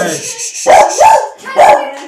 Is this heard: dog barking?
yes